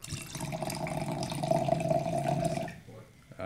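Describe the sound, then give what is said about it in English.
Wine is poured steadily into a glass by a first-time pourer for about two and a half seconds, a rising gurgle that cuts off abruptly, followed by a brief quiet moment. “for being a first-time pourer, that was fantastic.”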